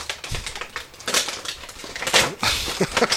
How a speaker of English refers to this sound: And nothing screams new generation more than Mr. Bob Backlund in the robe with the Winged Eagle title. This is fantastic. Let's rip this bad boy open. Uh-oh, we have a live unboxing.